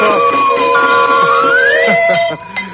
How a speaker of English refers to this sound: Listen, fellas and girls, you know what I'd like to do right now? Well, I'll tell you. I'd like to ring bells and blow whistles.